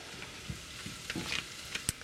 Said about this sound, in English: All right. I'm going to keep stirring.